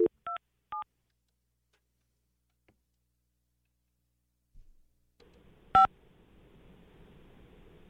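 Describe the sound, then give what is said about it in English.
Three quick telephone keypad tones beep in succession as a number is dialed on a different line, each a clear dual-pitched blip, then silence. A faint background hum follows with one more louder keypad tone. “Call on a different line. It might go through.”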